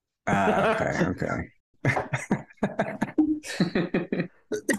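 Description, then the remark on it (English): A bad cough: a strained, groaning hack opens, followed after a brief pause by a rapid string of short, harsh coughs in quick bursts, fairly loud and with no talking. “I've got like a fucking bad cough.”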